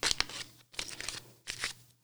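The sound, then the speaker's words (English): A deck of playing cards being shuffled: three quick, crisp riffling bursts with short pauses between them, and no one speaking. “I'm gonna shuffle these cards first.”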